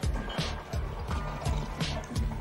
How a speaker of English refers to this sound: I'm talking about this. I'll just enjoy this glass of water.